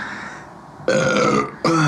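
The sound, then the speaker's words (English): Two loud, drawn-out burps in quick succession, the first lasting over half a second and the second cut off at the end, each with a rough, croaking tone and no talking. “I'm burping over dying.”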